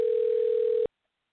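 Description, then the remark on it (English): A single telephone ringback tone, heard while calling a guest, is a steady electronic hum lasting just under a second that cuts off abruptly into silence. No voices are heard. “But let's get her on real quick here. Hopefully she picks up the phone.”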